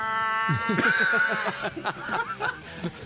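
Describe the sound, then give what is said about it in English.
A man's voice mimics yowling, caterwauling cats mating, mocking furries, in rapid, wavering squalls and whines, loud, with rising and falling pitch over a few seconds. “The sound of … mocking furries as cats mating is one of my favorites”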